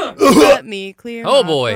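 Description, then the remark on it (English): A man clears his throat loudly: a rough, noisy rasp followed by a couple of short voiced, groaning hums, all within about two seconds. “Let me clear my throat.”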